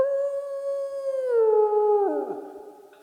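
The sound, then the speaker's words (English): A long, steady canine howl holds one pitch, then slides downward in two steps as more wavering voices seem to join and trail off near the end, loud with no talking. “But they pronounce dogs as dogs, and they all howl afterwards.”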